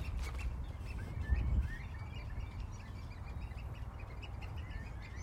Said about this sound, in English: It's amazing. One dog as well joining in, but it's just phenomenal. I love the sound of the waders.